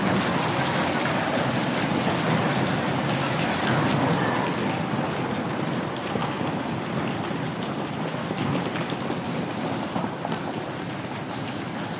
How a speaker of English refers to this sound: Did that work? I made it rain.